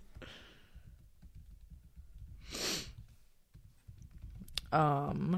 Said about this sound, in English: Oh, I keep typing in Chris Crit.